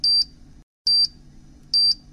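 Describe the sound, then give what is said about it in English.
A timer beeps in three evenly spaced bursts, each a pair of quick high-pitched electronic tones, loud, with faint low background noise between them. “go ahead and turn that timer off.”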